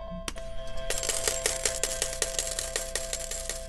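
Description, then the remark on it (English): A steady cascade of small metallic clinks and clatters, like coins tumbling and spilling, rattling on for a few seconds over a faint constant tone, moderately loud. “Oh my gosh, the little lizard right down there just matched up with those coins falling.”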